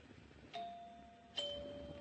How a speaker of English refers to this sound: Nice chimes. Pretty.